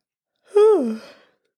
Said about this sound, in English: But it wasn't long before she noticed herself yawning.